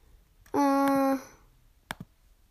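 A short, loud electronic beep is followed by a pair of quick, crisp computer mouse clicks on items while browsing online, with no one talking.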